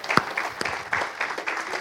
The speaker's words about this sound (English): Now give the Lord a hand clap if that's okay.